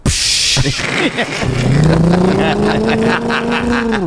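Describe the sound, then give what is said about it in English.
A voice imitates a bus going by during a comedy set, a steady, rising vocal rumble that swells and holds for a few seconds, fairly loud, after a brief breathy noise at the start. “the bus would go by. So you'd be doing your jokes and you'd hear like a.”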